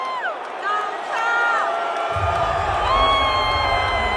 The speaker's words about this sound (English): There's some boos, but there's mostly cheers. Most people just screaming because they're excited to see him.